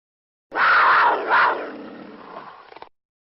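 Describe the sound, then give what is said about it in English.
A loud, raspy mountain lion roar played as a sound effect rises sharply, swells twice, then trails off into a rough, rattling growl over about two and a half seconds, with no talking. “But I do want to get a shout out to Mountain Lion. Donnie, please run my sound.”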